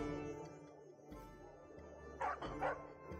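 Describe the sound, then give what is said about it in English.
A person's voice imitates a dog, letting out two short, loud woofs in quick succession near the end, following a few seconds of quiet low background hum. “All right, I will look straight in the dog's eyes and go.”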